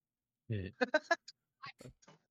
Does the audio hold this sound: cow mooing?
yes